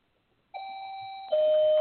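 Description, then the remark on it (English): An electronic doorbell chimes in two steady tones, a higher note followed by a louder, slightly lower one, each sustained and ringing clearly with no voices present. “Someone's at my door.”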